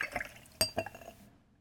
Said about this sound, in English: So we have an ounce of pisco right now. Okay. Pour it in.